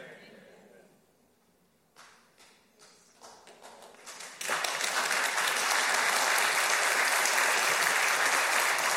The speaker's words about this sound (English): And every now and then he deserves a round of applause, doesn't he? Because he is more than sufficient for any trouble you and I might face.